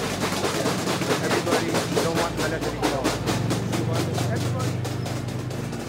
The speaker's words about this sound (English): You hear them? Oh, yeah. It gets louder and louder. Within seconds, it's the only thing you can hear in the whole market. Sound of people banging their pots and pans, banging together whatever they've got at hand, just to make a noise.